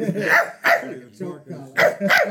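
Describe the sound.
A person imitates a dog barking, letting out about five loud, rough bark-like yelps in a quick, uneven series.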